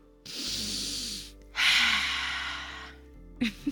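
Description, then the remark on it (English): A person vocally imitates a deep sniffing, making two long, loud breathy inhalations in close succession, followed by a couple of short quick sniffs at the end. “He's taking a good sniff.”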